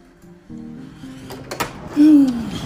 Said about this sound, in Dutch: Ja, hij doet het gewoon nog wel, want ik krijg gewoon de auto deur open, dus het moet gewoon lukken.